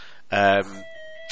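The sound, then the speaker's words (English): A doorbell chimes during a live broadcast, with a bright, loud first note that cuts off into a softer, lingering tone, which fades slowly before a short click at the end. “But there's my doorbell. just to show that it's live.”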